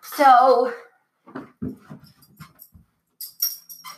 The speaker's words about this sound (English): Sorry for that long pause. My dog wanted on the bed because he's here recording with me.